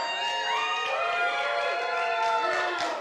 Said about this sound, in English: It's worth cheering for. So I give you permission to do that.